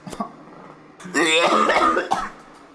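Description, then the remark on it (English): A person hacks through a short coughing fit: a couple of sharp coughs, then a long, raspy, strained spasm and one last harsh cough, loud. “If you die of a coughing fit?”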